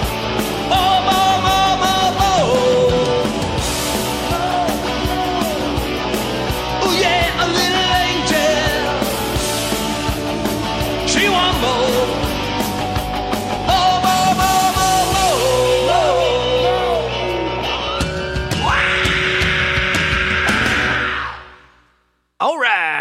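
A cover version of a loud, driving rock song with a shouted, strained male vocal over distorted guitars and pounding drums, playing continuously before cutting off abruptly at the end.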